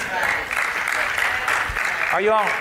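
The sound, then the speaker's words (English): An audience claps, roughly half the house, in a steady, dense wash of applause that holds throughout, and a voice briefly calls out over it near the end. “I'm getting like half the house clapping, the rest of you kind of looking at me like, what did he just say?”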